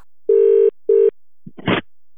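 signal or alarm, telephone ringing

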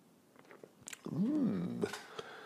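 food or drink, sipping coffee

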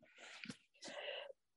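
human body sound, cough

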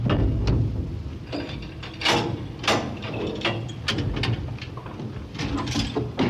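machine, elevator door closing

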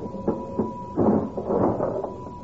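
machine, cash register ringing

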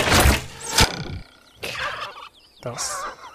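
bird, wild turkey gobbling

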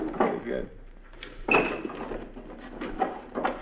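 household object, dresser drawer being opened

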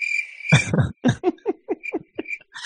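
insect, crickets chirping sound effect

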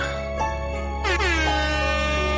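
signal or alarm, air horn blast

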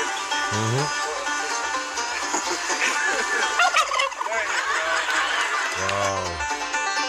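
bird, turkey gobbling

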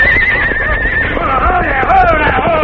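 animal, horse neighing

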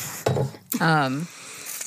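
food or drink, sipping tea

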